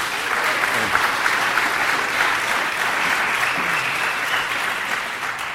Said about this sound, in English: And last but not least, thank these amazing panelists for taking the time to be here with us today. So give them one more round of applause, please.